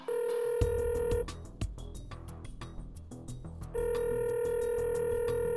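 A phone call being placed to someone in Athens, Greece: steady electronic tones and rapid dialing beeps, then a busy stretch of connecting sounds before the ringing tone returns, clear with no voices.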